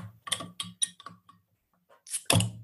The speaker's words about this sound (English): I dig the bottle. What's not to love? Right. Goose Island. Yeah, no, it's good stuff. All right, I'm going to crack this open. Here, I got a bottle opener.